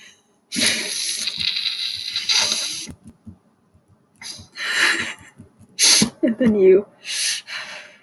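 Crinkling of a plastic Hot Pocket wrapper being crumpled up to throw in the trash: a long rustling crackle followed by several shorter, sharp bursts of crumpling, with brief pauses between them.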